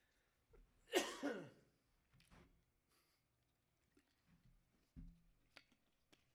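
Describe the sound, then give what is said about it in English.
A single loud cough bursts out near the start, followed by a few faint throat and mouth noises in otherwise quiet surroundings, with no talking. “I don't have a cough, but I know everybody else does. So I'm just doing that to make you feel right at home.”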